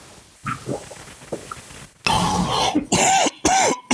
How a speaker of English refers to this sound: There you go. You see? Hey, that was a healthy. You need water. That cough was kind of dry.